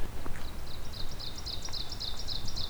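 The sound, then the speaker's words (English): Two ovenbirds sing their teacher song along a trail in late May, a rapid series of repeated bright two-part phrases that grow steadily louder over a low, rumbling outdoor background. “All right, we're coming up on a couple oven birds.”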